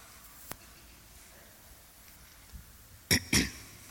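Two quick, harsh coughs close together near the end, loud, following a few seconds of quiet background noise with a faint click early on.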